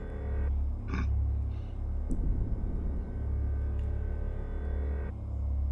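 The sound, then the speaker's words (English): A pig gives a short, rough snort amid a few other breathy grunts, all over a steady low electrical hum that runs throughout the quiet clip. “And then you hear a snort from one of the pigs, just...”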